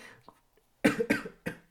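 cough

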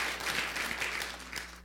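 audience clapping hands

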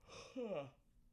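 yawn

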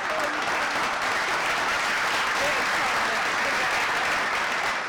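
studio audience clapping

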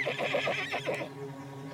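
horse whinnying

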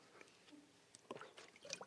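drinking water

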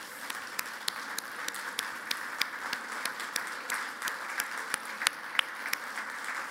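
audience applause

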